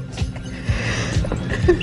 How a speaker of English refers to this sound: Sounds like a dog.